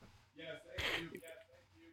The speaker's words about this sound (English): He's coughing.